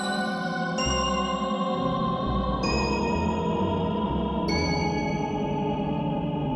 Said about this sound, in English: At the village, we hear the mountain variation of Majora's theme. A wind-like sound effect drones in the background while sickly bell-like instruments take the melody.